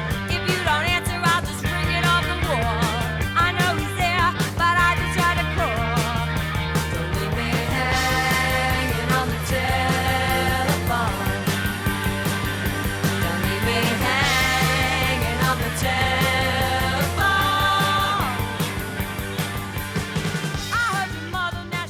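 An upbeat new wave rock song plays loud and steady throughout, with driving drums, bright guitars and bass filling the mix, and no talking over it.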